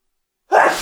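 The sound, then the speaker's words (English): A single loud sneeze bursts out after a moment of silence, sharp at onset and trailing off with a breathy tail. “Well, I got to sneeze.”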